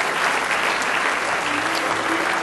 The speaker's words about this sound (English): Somebody say praise the Lord. Give Him a good hand clap of praise if you love Him this morning.